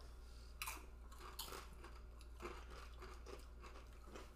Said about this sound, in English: Come on. You stop chewing. Oh, come on. Stop.